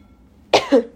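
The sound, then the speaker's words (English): A single cough bursts out sharply, followed by a brief throaty tail as it trails off, with silence before it and no talking. “I just coughed.”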